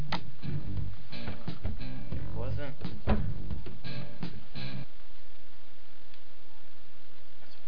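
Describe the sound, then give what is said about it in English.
A telephone rings with an incoming call, a busy run of electronic tones and chirps lasting several seconds before cutting off into quiet background hiss. “sorry for the interruption. Our first ArginaCast phone call.”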